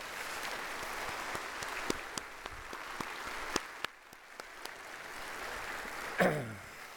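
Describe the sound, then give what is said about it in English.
A crowd applauds the staff steadily, a dense wash of clapping with sharper individual claps standing out. Near the end a brief higher voiced sound, like a cheer, rises above it. “And I think we owe them a huge round of applause.”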